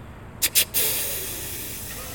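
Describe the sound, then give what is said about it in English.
A person imitates a deer's snort-wheeze with the mouth: two short, sharp breathy bursts followed by a longer, fading hiss of forced air, fairly loud. “I can snort wheeze with just my mouth.”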